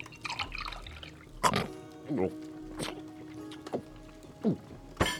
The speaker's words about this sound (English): Now, why don't we have a drink to celebrate? Come, pour me a glass of wine. As you wish.